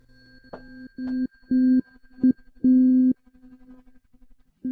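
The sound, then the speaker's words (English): A tuning fork tone at pitch C pulses on and off in an uneven, Morse-code-like pattern of short and long bursts, fairly loud, with a faint hum between tones and no talking. “So here is the C. Yeah, it wasn't terribly clear. It sounded a little bit like Morse code.”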